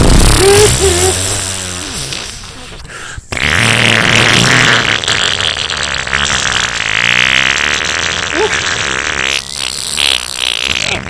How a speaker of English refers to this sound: So you hot boxed his car, didn't you? You hot boxed his car, you farting son of a bitch.